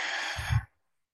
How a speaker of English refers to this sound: Okay, so everyone just take a nice deep breath. Let's take one breath together. Nice big belly breath. And release.